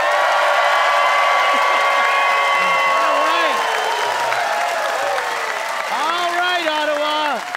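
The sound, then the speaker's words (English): The audience of CBC Radio 1's The Debaters applauds loudly and steadily for several seconds for debaters Ron Sparks and Leonard Chan, with cheers and whoops rising over the dense clapping throughout. “Big hand for Ron Sparks and the one and only Leonard Chan, everybody.”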